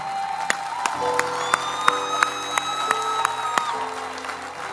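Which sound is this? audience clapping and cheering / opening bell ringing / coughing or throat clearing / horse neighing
audience clapping and cheering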